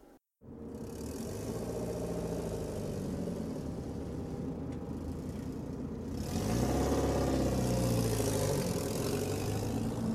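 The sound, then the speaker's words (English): A car engine idles with a steady low rumble, then grows a bit louder and shifts pitch partway through, as if given some gas. No voices. “Look, I know I shouldn't be working, and I know that my car isn't in any shape to be doing this, but it's not like I have any other choice.”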